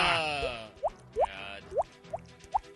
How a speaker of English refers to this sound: There you go. Here's the drip. Oh.